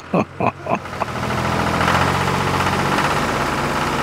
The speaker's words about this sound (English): Got back on the tractor and left.